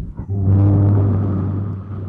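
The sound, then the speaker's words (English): A voice imitates a boat with a single loud, sustained low rumbling drone lasting about two seconds, steady in pitch with a gritty, motor-like buzz. “You want to hear my impersonation of a boat?”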